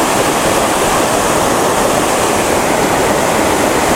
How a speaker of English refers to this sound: Yesterday when I was at the little waterfall, the secret one, when I got close to it I could feel the wind coming off it. But here, I'm not even close. And I can feel the wind coming off it.